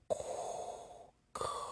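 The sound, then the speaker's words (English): A voice imitates Darth Vader's heavy mechanical respirator breathing, as heard on the PlayStation background of a Star Wars game: one long, harsh, hissing breath, a brief pause, then the next raspy breath begins. There is no other talking. “You turn on the PlayStation, Darth Vader's breathing.”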